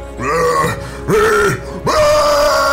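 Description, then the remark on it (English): A human voice imitates Godzilla's roar in three loud, rasping bursts, each a sustained growl with a rising and falling pitch, separated by short pauses. “I try and match the Godzilla roar.”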